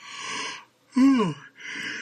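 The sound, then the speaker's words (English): A drawn-out yawn: a long breathy intake, then a brief voiced groan that slides downward in pitch, followed by another breathy exhale. No talking. “But yawn and yawn. It's called dedication.”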